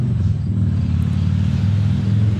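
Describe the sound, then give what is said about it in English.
A loud truck engine rumbles as it passes, a deep, steady drone that holds at the same strength for the whole stretch, with no voices over it. “I think those are the loud truck.”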